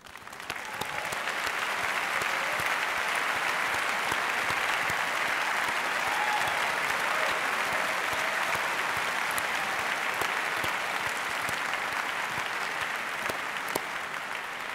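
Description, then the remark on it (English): Sustained audience applause from a large crowd for Julian Assange as he joins the discussion, a dense steady wash of clapping that starts quickly and holds at an even, fairly loud level for the full stretch without any talking. “So I would like to ask you for a big applause for Julian Assange, who will join us now.”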